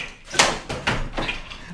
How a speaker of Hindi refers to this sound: अरे रुको भाई, आ रही हूँ, खोलती हूँ दरवाजा।